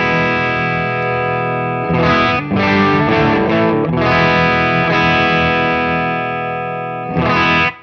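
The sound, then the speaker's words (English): Overdriven electric guitar through a Tube Screamer pedal alone, its drive backed way off to about 9 o'clock, playing sustained chords with a brief choppy run in the middle, loud and mildly distorted with a warm, compressed edge, and no voices. “The sound of just the Tube Screamer, the LED's not very bright.”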